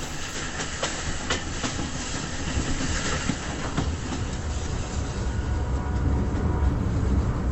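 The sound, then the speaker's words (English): A train rumbles steadily along the rails, with sharp rhythmic clicks and clatters over a constant low roar, loud throughout with no voices. “This train is the clicked passing of dreams.”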